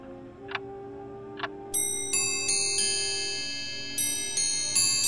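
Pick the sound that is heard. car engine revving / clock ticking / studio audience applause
clock ticking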